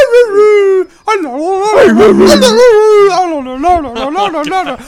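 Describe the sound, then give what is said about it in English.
A small Pekingese dog whimpers and yips in loud, high-pitched wavering cries, sustained and sliding up and down in pitch, with one brief pause early on. “Oh, God, it's Mike Myers, and he's playing the Pekingese piccolo.”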